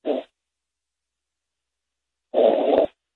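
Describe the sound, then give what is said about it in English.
Snoring of a man who fell asleep during a phone call: a brief raspy snort, then after a couple of seconds of silence a longer, rougher rattling breath. Moderately loud, with no voices. “That's him snoring.”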